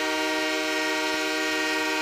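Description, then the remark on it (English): A hockey goal horn blares for a goal scored in one loud, unbroken honk, a rich, droning tone held steady for the full couple of seconds with no voices over it. “Honk, honk. Goal scored.”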